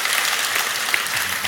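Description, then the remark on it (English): An audience at the Godspeak ministry claps steadily in celebration, a dense, continuous wash of many hands applauding at a fairly loud, even level with no voices standing out. “So, amen. Clap.”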